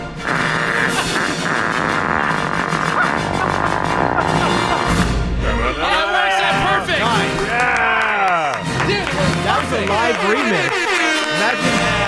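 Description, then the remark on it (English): A fanfare imitated with loud, buzzy fart noises: blaring, brassy tones hold and then swoop up and down in pitch, carrying a bumpy melody for about twelve seconds. “I got the fart. Okay. 20th century fart.”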